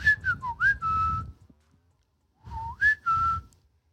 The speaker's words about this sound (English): I was saying it just sounds like you're whistling. I don't think it's anything that special